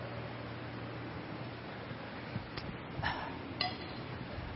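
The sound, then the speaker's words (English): A glass of water is set down on a hard surface with no carpet, making a few soft, brief clinks and knocks over a steady background hiss, with no one speaking. “And every time I set the water down, it makes that little clink sound because there's no carpet, so...”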